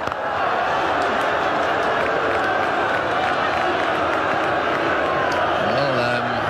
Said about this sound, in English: Booing going on here, but I really don't think they know what's happening. They don't understand that this is working for the Australians in the next round.